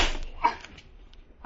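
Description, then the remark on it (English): A couple of sharp slaps land in quick succession as a man is slapped around, crisp and smacking, with a soft scuffle and a faint breathy whimper trailing after them. “What are you slapping me around for?”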